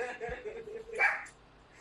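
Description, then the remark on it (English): A single short bark from the speaker's own dog rings out after a moment of quiet background, sounding slightly muffled. “Your dog just said yes, just so you know.”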